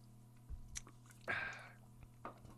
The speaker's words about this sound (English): This is going to be the last sip of this you're ever seeing me take.